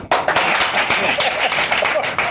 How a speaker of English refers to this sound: We're just going to have applause for an hour and a half, right, basically.